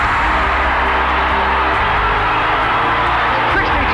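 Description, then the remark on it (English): A basketball arena crowd at a Nebraska Huskers game against Kansas roars and cheers after a layup puts Nebraska up 62-55, as Kansas takes a timeout; a loud, dense, unbroken wash of noise that holds steady for the whole stretch, with occasional whoops rising out of the din. “Listen to this crowd!”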